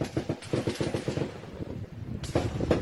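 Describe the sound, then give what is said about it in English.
Rapid, rattling bursts of gunfire crackle almost continuously, fading briefly near the middle before a loud new volley erupts at the end, with no voices; reportedly gunfire in Texas and Mexico. “Again, this is apparently linking Texas and Mexico as experiencing substantial outbursts of gunfire.”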